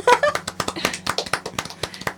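A short burst of applause from a few people welcoming a guest, crisp uneven claps tumbling over one another for about two seconds, with a brief high whoop right at the start and no talking.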